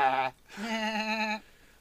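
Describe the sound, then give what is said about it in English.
A human voice attempts a horse whinny: a short nasal cry, a brief pause, then a longer, steady, bleating tone, fairly loud, coming out more like a sheep or goat. “The hell sound was that? I was trying for a horse.”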